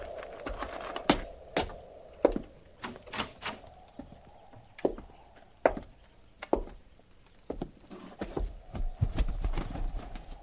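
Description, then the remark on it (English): Horses' hooves clip-clop in an irregular, overlapping rhythm of sharp knocks over a steady low background hum with no talking. “Flint, hobble them horses and get up there.”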